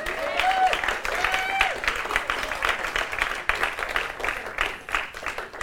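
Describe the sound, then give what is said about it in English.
An audience claps for its worship team in a dense, steady burst of applause that holds loud for several seconds, with a couple of brief whistles rising above it near the start. “Would you all please just give a clap of praise to our worship team today?”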